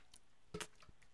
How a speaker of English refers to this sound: Excuse me while I get a little drink of water.